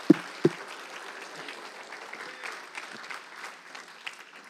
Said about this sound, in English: Come on, can you clap your hands in applause for Jesus?